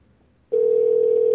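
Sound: telephone ringing tone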